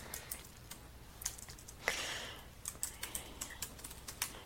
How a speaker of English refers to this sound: I'm typing it in my notes that I'll be talking about vibrations.